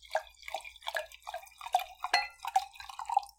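Rosé wine glugs out of a bottle in quick, bubbly gurgles, a steady run of liquid splashing and dripping over a few seconds, some spilling onto the person pouring and a desk chair, with no talking.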